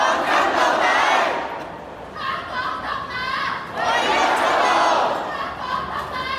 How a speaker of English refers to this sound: There were people chanting the same slogans as last year, but some different ones too. Some were shouting, "Hong Kong independence, the only way out."